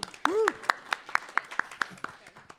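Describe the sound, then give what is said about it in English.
Steady, evenly spaced hand claps, about ten crisp slaps in a row at a moderate level, with a short rising-and-falling vocal sound near the start. “Round of applause for such bravery.”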